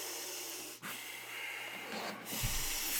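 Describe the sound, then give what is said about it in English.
Someone imitates heavy, furious hyperventilation, the way a person breathed while watching a movie: loud, harsh breaths rushing in and out with only brief catches between them, no talking. “Like you were hyperventilating.”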